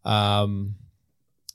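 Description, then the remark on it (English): A sustained voiced sound fades out, then after a short silence a single crisp computer mouse click sounds, brief and fairly quiet. “We'll just keep clicking through here.”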